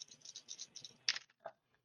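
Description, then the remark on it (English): Dice rattle briefly in a cupped hand as they are rolled for a game, a quick clicking shake that ends in a couple of sharper clacks as they tumble out and settle. No one speaks over it. “And this time I won't forget that I have enhancement on my gun, which I just looked up. All right, give me my dice.”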